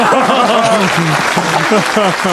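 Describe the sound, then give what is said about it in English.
Steady audience applause fills the room after Jeb Bush asks the crowd to please clap, a dense, even patter of many hands clapping, with a voice speaking over it throughout. “Jeb Bush pleading for people to clap great”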